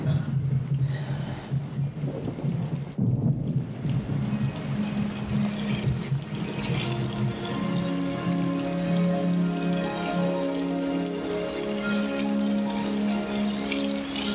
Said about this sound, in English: I think we should get out of the rain.